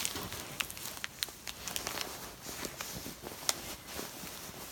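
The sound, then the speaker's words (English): Soft, continuous rustling and crinkling of fabric as a pillow form is pushed into its fabric cover, with scattered brief scratchy bursts, fairly quiet, no voices. “Then you want to take your pillow form.”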